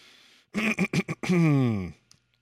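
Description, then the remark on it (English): A person clears their throat: a quick series of four or five rough, choppy bursts, then a longer drawn-out voiced rasp that trails off into quiet. “I was like trying to clear my throat.”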